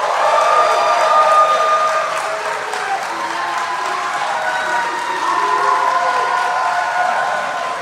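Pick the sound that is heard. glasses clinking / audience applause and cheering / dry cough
audience applause and cheering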